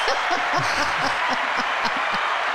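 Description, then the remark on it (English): A round of applause from a group at an event on the fairgrounds, a dense, steady wash of clapping that holds at an even loudness throughout, with faint voices murmuring underneath. “Round of applause. There we go.”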